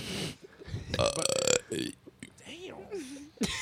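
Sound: burp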